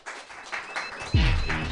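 An audience applauds after a comedy set with dense, steady clapping, and partway through a loud voice breaks in with a sliding cheer over the continuing applause.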